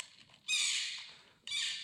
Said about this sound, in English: Am I crazy? Does this sound like this thing is saying fuck again and again? This porcupine has been asked to leave the Michaels for not wearing a mask.